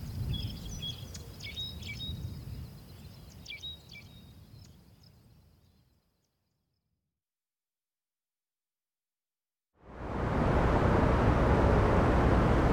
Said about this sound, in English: And in contrast to the songs of ground finches and mockingbirds a couple of hundred metres behind me